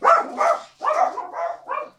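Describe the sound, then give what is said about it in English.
Puppies barking in a quick, steady run of about six sharp barks, fairly loud, with no one talking over them. “The puppies are protecting us.”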